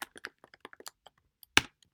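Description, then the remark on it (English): Quick, uneven clicks of keys as a woman types on a computer keyboard, clear, with short pauses and one louder key strike near the end; no voices. “She's typing.”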